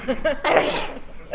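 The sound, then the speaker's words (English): A single sneeze: a couple of quick voiced gasps build up, then a sharp breathy burst that trails off into a soft exhale. No one is talking. “Bless you.”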